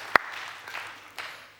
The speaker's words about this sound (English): Give him a clap. I love that.